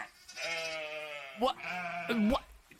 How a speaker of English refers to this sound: And we've got sheep. Why have we got sheep?